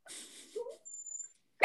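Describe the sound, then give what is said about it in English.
A dog kept in a cage makes short whiny vocal sounds, followed after a brief pause by a sudden loud bark at the very end, with no one talking. “Because I've been muting my phone off and on because this motherfucker keeps on barking.”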